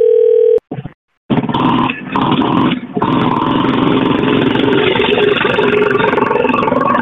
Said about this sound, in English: Hello? Hello? Whoa, man, what was that noise? A motorcycle calling. Oh, man, I thought I was calling Lucifer or something.